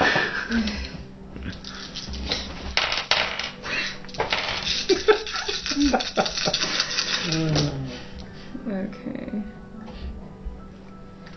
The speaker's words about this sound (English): Still spinning. Okay. Oh my god. Spinning dice.